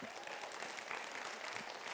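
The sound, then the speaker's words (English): An audience claps for Nick, who shares the gospel of Jesus around the world, steadily throughout, a dense, even patter of many hands with a broad hissy texture, sustained at a constant moderate loudness for the whole stretch. “And beyond that, you can clap.”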